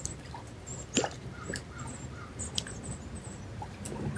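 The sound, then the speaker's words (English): Scattered short, high bird chirps call out over a steady outdoor background hiss, with a couple of sharper clicks or taps mixed in and no one speaking. “Letting the sound current of the birds be yours.”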